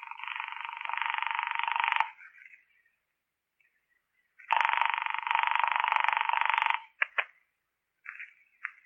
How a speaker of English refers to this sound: I let it ring the 10 times the phone company recommends and forgot it. Mrs. David Hartnett was not at home.